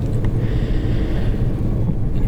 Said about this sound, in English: That thundering noise in the background is the train I'm on.